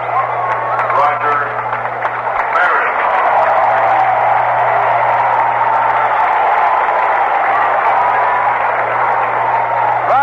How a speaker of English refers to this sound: Is applauded by most as he comes to the plate, booed by a few because he broke Babe Ruth's record.